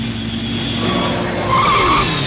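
Car engines roar and tires skid in a loud, continuous burst from the trailer for the film Death Race 2000, a dense mix of revving motors and squealing rubber with no voices.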